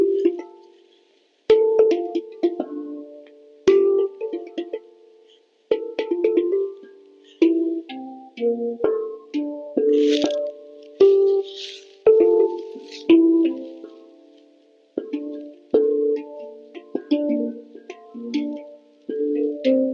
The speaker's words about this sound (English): The beginning is just a hangpan, just going like.